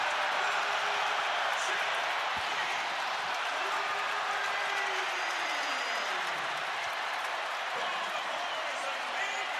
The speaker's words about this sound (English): And the crowd that's been quiet all half has something to cheer about.